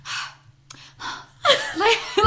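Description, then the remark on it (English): A voice imitates the theatrical gasping of bad actors in a touching scene: three quick, breathy inhales, then a wavering, whimpering sob-like cry, fairly loud. “like you hear that every time, like when they take in a breath or like something amazing happens, they gasp and like they're gonna cry, and it's just like, shut the fuck up.”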